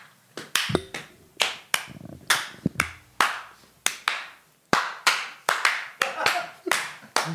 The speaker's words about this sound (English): That's a miserable round of applause. Yeah. That's pro clapping, bro. It's true. That was very prog. Yeah, super prog clapping.